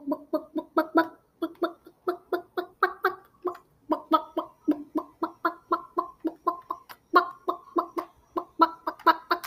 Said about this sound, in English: Any chickens? Chickens.